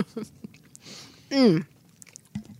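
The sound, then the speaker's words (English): Chewing of a chewy Starburst candy, with soft, sticky smacks and wet clicks at an uneven pace, broken midway by a pleased, drawn-out humming murmur from the person eating. “Because, like, I think almost every American child has fond memories of Starburst and can be returned to childhood simply by chewing one.”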